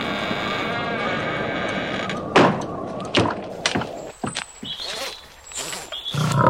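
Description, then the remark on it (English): A lion, Aslan, roars in a blizzard, a long, rough, rumbling growl. It is followed by a string of heavy thuds and whooshing bursts, with a high whistling tone near the end. “A talking lion?”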